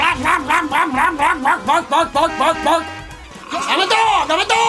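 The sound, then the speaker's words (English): A person imitates a dog with a quick, steady run of loud yapping barks, then trails into a few looser, drawn-out vocal yelps. “I'm a dog! Yes. I'm a doggy!”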